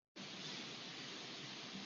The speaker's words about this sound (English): Can everyone put their mics off, please? There's some sort of interference coming.